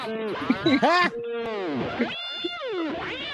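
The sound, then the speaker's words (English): A person imitates an angry cat with a long, wavering yowl that rises and falls in pitch. It's loud, with a few sharp bursts in the first second. “I asked for bounty wow and you gave me a pissed off cat.”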